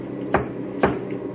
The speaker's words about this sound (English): Then you better warn our machine gun crew in the back. Right. 3 knocks on the back of the cab.